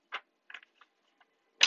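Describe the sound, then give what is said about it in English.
Cards from a Mucha tarot deck being shuffled: a handful of short, crisp papery flicks and taps at an uneven pace, mostly soft, ending in a louder riffling burst, with no voices. “So, I am shuffling my tried and true tarot mucha.”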